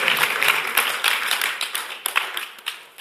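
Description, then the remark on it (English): A church audience claps together, a dense, steady patter of many hands that holds fairly loud throughout, with a few sharper individual claps standing out near the end. No one speaks. The audience is clapping for a team that has served over 3,500 meals. “Oh, not if you're going to clap for that, give it a clap.”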